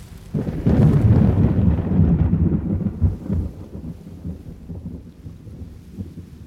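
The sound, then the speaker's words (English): A loud rumble of thunder rolls in and slowly fades over several seconds, leaving the steady hiss of heavy rain falling in the background. No one speaks. “At least it's not raining like yesterday.”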